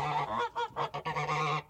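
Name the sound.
flock of geese honking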